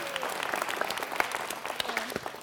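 A church audience applauds and cheers steadily for a woman called up to give a testimony, with dense rapid clapping and a few scattered voices and cheers rising over the noise.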